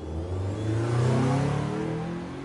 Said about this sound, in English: Well, a veritable traffic cacophony is unfolding across the nation. The Lincoln Tunnel, a monumental marvel of the 1930s, has gone and jammed up something rotten.